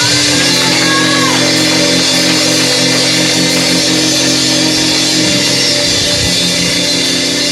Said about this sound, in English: Come on, give God a clap praise for your dream.